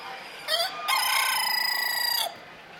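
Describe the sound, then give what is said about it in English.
A Dorking rooster of the silver gray variety, a cockbird more than a year old, crows once, loud: a short rising note followed by a long, sustained harmonic call that holds steady for over a second before cutting off, with no talking. “I have here a cockbird. That means he's more than a year old. He's a Dorking breed, and he's a silver gray variety.”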